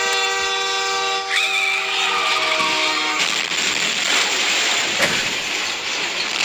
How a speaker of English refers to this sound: What is that? It's a train!